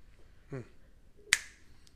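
A single loud finger snap: a sharp, bright crack that stands out against near silence, with a short fading tail. A brief low murmur comes just before it.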